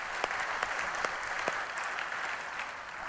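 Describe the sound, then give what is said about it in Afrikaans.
An audience claps hands for the Lord in dense, steady applause, a broad wash of many overlapping claps with a few sharper, louder claps standing out, continuing evenly throughout. “Dis my so lekker, kom ons gee die Here hulle hande klap.”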